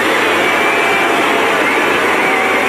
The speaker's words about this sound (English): and then as she approaches her dad and sister, the boos suddenly get even louder. Went over to hug her father and her sister. More boos from the crowd.